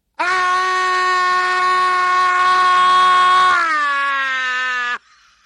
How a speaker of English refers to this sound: That was very good, actually. So there you go. There's the gold standard scream.